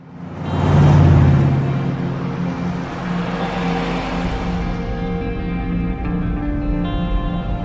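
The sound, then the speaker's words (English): A car carrying a mother and her daughter drives steadily through a small town, Chehalis, Washington, its engine hum and low road rumble swelling early, then holding at an even level, with no one speaking. “we see a mother and her daughter riding in the car, driving through this little town.”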